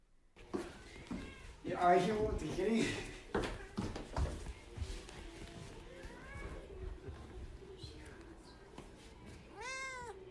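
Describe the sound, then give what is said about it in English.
A mother cat meows and yowls repeatedly at a house, its loud, drawn-out cries rising and falling, with a final sharp meow at the end; people talk in the background. “No, this is the mother cat.”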